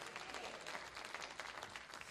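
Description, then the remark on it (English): An audience claps their hands to the Lord, a steady wash of many overlapping claps forming dense, sustained applause with no clear rhythm, holding at an even level throughout. “Why don't you just clap your hands to the Lord if you're thankful?”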